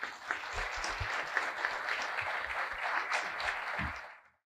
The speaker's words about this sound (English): Let's welcome Rajiv Ji to Seva International Masik Milan with a great round of applause.